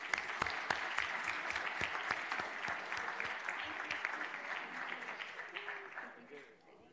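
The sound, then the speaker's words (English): An audience at a commission meeting claps steadily for several seconds for the Las Vegas Alumni Chapter of Delta Sigma Theta, a dense, even patter of many hands that stays fairly loud before tapering off at the end. “And if we can give them one more round of applause for all that they do.”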